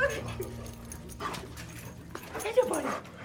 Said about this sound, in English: A lovable therapy dog greets me at the door.